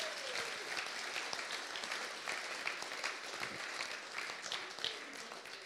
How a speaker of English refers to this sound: Let's give her a round of applause again, shall we?